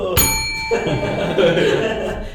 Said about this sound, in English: Ding the bell!